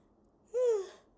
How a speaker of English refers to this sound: Lord, I'm yawning on the podcast.